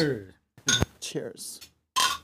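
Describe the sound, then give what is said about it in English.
A single quick, bright clink of glasses in a toast with Prosperity Wheat beer from Market Garden, set among short bursts of people talking before and after it. “So let's try it out. All right. Cheers, my friends.”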